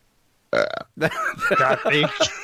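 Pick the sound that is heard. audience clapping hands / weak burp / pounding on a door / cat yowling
weak burp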